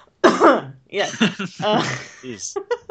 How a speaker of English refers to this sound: Sorry, this is like the worst possible time to cough.